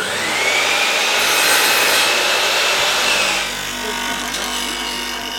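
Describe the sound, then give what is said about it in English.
A power saw cuts through wood in a workshop shed, a loud, steady whining rasp that runs continuously for several seconds and eases slightly near the end, with no one talking. “The shed is filled with workbenches, drills, lathes, circular saws, sanding machines, hammers, chisels, nails, and every other tool you can think of.”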